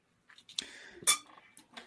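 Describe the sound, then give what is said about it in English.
Someone sips a drink: a soft slurp framed by two sharp glassy clinks with a faint ringing tone, then quiet handling rustles as the glass is set down. “Take a sip of my drink as I sit back and try to think on this one, noodle it a bit.”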